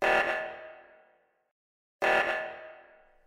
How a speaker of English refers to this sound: Is that your ringtone? Oh, sorry about that. I've been playing a lot of Among Us lately. Been so long since I've been on the air properly, I forgot to silence it.